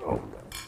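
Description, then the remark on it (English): Three people clink drinking glasses together in an in-person toast: a low muffled bump first, then a bright, ringing chime that sustains briefly. “So that was an in-person cheers between the three of us.”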